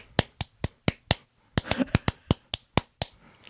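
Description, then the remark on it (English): A run of crisp hand claps, about fourteen sharp hits in a steady, quick rhythm with brief gaps between them, moderately loud with no music behind them; the clap break of a Ghostbusters Day song. “No, it's the clap break.”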